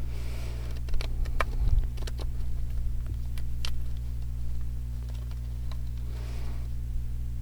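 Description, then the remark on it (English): Cards being shuffled before pulling a card, heard as soft, irregular flicks and light snaps scattered across several seconds over a steady low electrical hum, with no one speaking. “So I am going to, as I shuffle them, I'm going to say a grounding prayer. So I'm going to be silent for a moment while I breathe and shuffle.”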